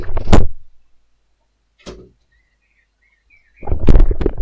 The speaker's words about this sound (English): Oh my god, I need to close my door. One second.